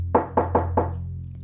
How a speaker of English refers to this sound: Lucas is deep in thought when a knock on the bedroom door startles him out of his reverie.